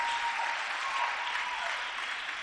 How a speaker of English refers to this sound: A round of applause.